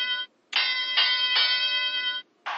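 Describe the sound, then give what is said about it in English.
A wrestling ring bell clangs in quick repeated strikes, ringing loud with a bright metallic tone, a brief hit, a long sustained run of rapid dings, then another hit starting. “Oh, there we get the bell ready.”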